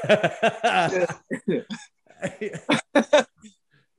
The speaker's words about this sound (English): Coughs don't count.